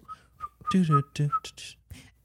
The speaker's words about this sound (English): Apparently we can't. I can't. I can't whistle. We failed the test.